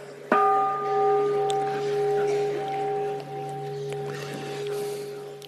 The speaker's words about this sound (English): Whoa. There's something about that bell, or bells in general. I don't know. Maybe we were all trained in kindergarten when the teacher would go ding-a-ding-a-ding.